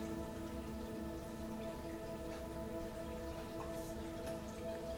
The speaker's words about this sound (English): quenching the soil, and you can see the rain floating in gentle waves in the earth in front of you, and that soft music of the raindrops falling on the earth, a sweet sounding serenade.